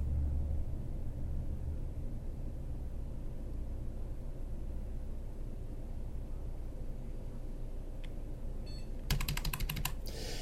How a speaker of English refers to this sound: Hopefully you heard the beep from the PC speaker. I have hit F12 a couple times just to make sure I was in the menu.